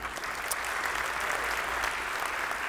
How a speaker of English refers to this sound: See, Jesse, you're listening right now, and they just clapped for you. That's pretty cool.